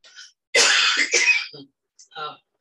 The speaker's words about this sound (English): I have to cough.